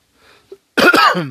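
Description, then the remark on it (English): A soft breath and a tiny click, then a loud throat clearing: a raspy, voiced rumble in one burst lasting about half a second, with no speech. “Let me clear my throat for this one.”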